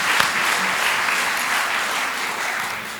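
Steady applause from an audience, a dense wash of clapping hands that holds at an even, fairly loud level throughout with no voices breaking through.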